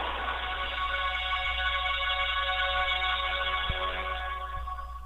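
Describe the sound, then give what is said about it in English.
A phone ringtone plays loudly and continuously for several seconds, a steady electronic tone rich in harmonics over a low droning hum, with no voices. “That's my new ringtone.”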